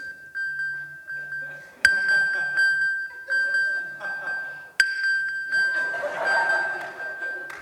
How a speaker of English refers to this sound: And as you hit that tab, it will begin to find the very phone that you have lost, and it will begin to send out a sonar signal, your phone calling out from the abyss of where it's lost, saying, I'm over here.